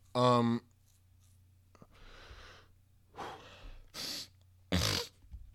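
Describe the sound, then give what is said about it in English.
Someone blows their nose in a series of rough, breathy bursts of air, three or four honks in quick succession after a brief voiced grunt. “I'm gonna blow my nose.”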